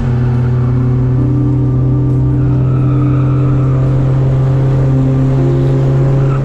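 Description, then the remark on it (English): A race car engine roars at full power as the car speeds down a straightaway after leaning into a left turn, a loud, sustained droning whine that holds a steady pitch with slight rises and shifts throughout, with no voices. “He approaches a left turn, perfectly leans into it, and speeds full power down a straightaway.”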